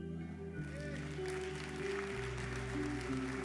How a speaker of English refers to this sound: Come on, clapping.